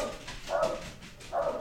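Two short dog barks, spaced about a second apart, sound somewhat muffled against a quiet background, with no one talking.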